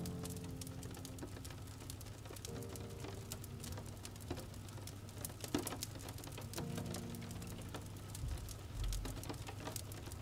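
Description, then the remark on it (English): Light drizzle patters steadily against a window, a soft continuous spatter of scattered tiny taps over a low, constant background hum, with no one speaking. “The sound from the fire and the rain at the window, intertwined with each other, mix into the most relaxing sound, the most natural sound, to send you deeper.”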